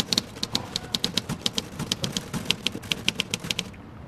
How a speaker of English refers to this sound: I'm writing, like you'll be, when you start punching those keys.